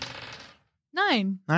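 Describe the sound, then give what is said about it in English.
A brief burst of rattling, clattering encounter dice being rolled that quickly fades out, followed after a short pause by a person speaking. “You know, I'll get you to roll the encounter dice twice.”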